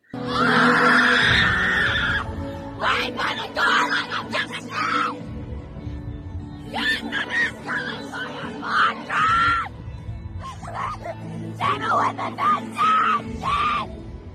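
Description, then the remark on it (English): A voice imitates the harsh, guttural screeching of a concert fan singing along in the crowd, like a donkey's bray, in three loud strained bursts with short pauses between, rough-edged. “And an individual beside them started singing with sort of a guttural screech that can only be described as sounding like a constipated donkey.”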